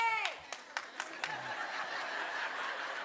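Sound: audience cheering and applause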